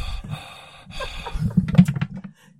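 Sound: imitated heavy breathing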